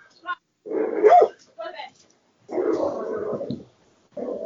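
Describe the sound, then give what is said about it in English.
A dog barks in a handful of bursts, a couple short and sharp, others longer and rougher, with brief silent gaps in between. “Yeah, we know any muzzle manufacturers. They might watch us. One for me, one for the dog.”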